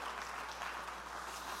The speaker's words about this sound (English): Would you clap your hands and thank God that he touched you one day?